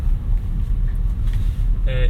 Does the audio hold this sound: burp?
no